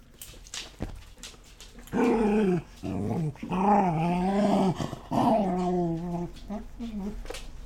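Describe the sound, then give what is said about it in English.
A female dog sitting on a person's lap growls right into the microphone, loud and throaty, in several drawn-out rumbles with brief breaks between them, the pitch wavering up and down. Faint background noise fills the pauses. “She's on my lap. And growling?”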